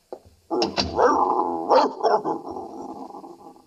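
An old female dog growls and barks, a rough, sustained snarl broken by a few sharp barks, continuing for several seconds with no talking over it.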